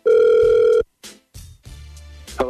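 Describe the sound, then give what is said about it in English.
A steady electronic phone ringback tone of an outgoing phone call sounds loudly for under a second, followed by brief clicks and line noise as the call connects. “We're going to try and get this guy on the phone right now, okay?”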